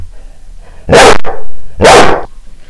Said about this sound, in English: Tell me, what's the matter? I mean, what's the matter? Hyper dog, mad dog. Oh, what's the matter?